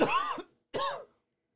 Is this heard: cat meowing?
no